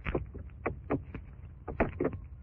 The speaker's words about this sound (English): Lamont, what was that noise? He had a padlock in his hand, Margo. He put it on this door. You mean we're locked in?